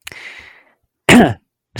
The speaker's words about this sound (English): Well, I tried not to cough during it. That's why it came out gross.